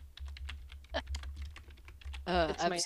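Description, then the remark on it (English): Rapid typing on a computer keyboard, a steady patter of sharp clicks for about two seconds before a person starts talking. “…, yes. Yes. Or keyboard. Keyboard, I'm sorry”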